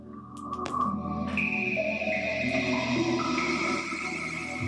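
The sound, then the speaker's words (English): The Sega Dreamcast console's electronic startup chime, with sustained, layered synth tones that swell and hold, shimmering bright pitches stacked over a warm low drone, playing alone for a few seconds. “That, folks, is the glorious Dreamcast.”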